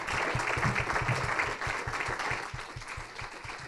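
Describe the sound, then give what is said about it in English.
Sustained applause from a crowd for a panel at an Engage ICT conversation at Roxy's, dense rapid clapping that stays steady and fairly loud for several seconds before easing slightly toward the end, with no one speaking over it. “Let's have a huge round of applause for our panel.”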